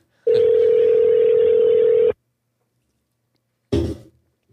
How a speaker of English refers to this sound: you push all the buttons of their phone number and then you push the green one that says like call